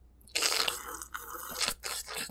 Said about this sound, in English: No. I made the good coffee with my own two hands. Okay. No, the coffee saga goes beyond the Wendy's. I will explain in a moment. First, I'm going to take a sippy sip of my coffee.